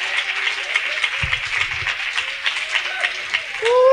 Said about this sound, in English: Come on and clap your hands and praise the Lord.